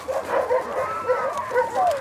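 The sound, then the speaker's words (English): A pack of sled dogs yips, whines and barks together in an excited, overlapping chorus, with high rising and falling cries running continuously for a couple of seconds. The dogs are mushed by model Quanta Chasing Horse. “She mushes dogs and hunts and fishes.”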